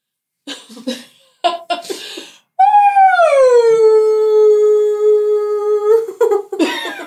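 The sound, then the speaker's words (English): A person imitates a wolf howl: one long, loud, sustained tone that starts high, slides down and holds steady for about three seconds, preceded and followed by short breathy, cough-like vocal bursts. “Do one more howl.”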